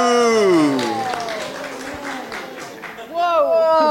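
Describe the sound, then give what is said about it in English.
A few audience members, women, applaud with scattered, uneven claps in response to the film Once Upon a Time in Hollywood being named, mixed with loud whooping and cheering voices that rise and fall in pitch throughout. “Thank you, the women who applauded with me.”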